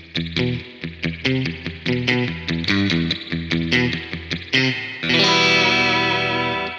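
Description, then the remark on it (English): Surf-style electric guitar run through a drippy spring reverb: quick picked notes in a bouncing rhythm, then a loud sustained chord that washes out and rings on. No talking. “And Spring Reverb. This is the one who creates the magic of the spring, of the surf sound.”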